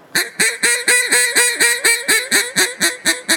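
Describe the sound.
A duck call blown in a Cajun squeal: about thirteen loud, raspy, nasal quacks in a quick, even run, each note rising sharply then holding, with no talking.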